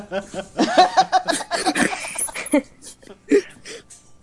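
A dog barks in a quick flurry of sharp yelps, then lets out a couple more isolated barks after a short pause.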